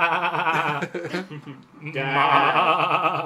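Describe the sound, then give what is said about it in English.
Goats and sheep bleating in two drawn-out, quavering bursts separated by a short pause, fairly loud. “It's full of goats and sheep.”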